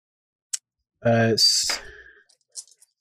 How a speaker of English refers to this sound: I dropped my die on the floor.